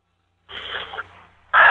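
Heavy, rasping breaths come through a thin, narrow-band phone line: one long breath, a short pause, then a sudden louder, harsher exhale into the mouthpiece. No one speaks.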